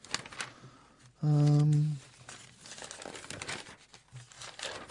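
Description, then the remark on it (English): Newspaper pages rustle and crinkle steadily throughout, fairly loud, as someone searches through the paper for a story, broken midway by a short, steady hummed vocal tone before the papery shuffling carries on. “Got the wrong paper, look. Got the wrong paper.”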